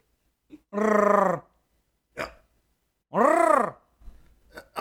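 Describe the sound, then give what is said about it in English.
Two drawn-out, loud vocal howls, voices imitating animals, the second rising and falling in pitch, with short scattered vocal noises in between and after. “… and … are just kind of wandering aimlessly, screaming in their respective howls”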